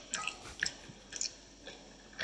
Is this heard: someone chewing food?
yes